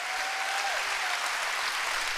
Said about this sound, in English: Come on, clap your hands. Rejoice.